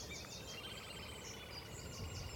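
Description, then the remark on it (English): A little grebe gives a high, rapid whinnying trill that rises and falls in squeaky bursts, over a low outdoor rumble, with no voices. Recorded by a railway track running west to east, with a ditch on one side. “That is, that's the little grebe. Always sounds like a really squeaky motorcycle trying to start up.”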